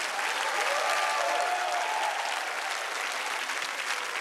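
A church audience claps their hands for the praise and worship music in a dense, sustained burst of applause, steady and fairly loud throughout, with faint whoops and raised voices mixed into the crowd noise.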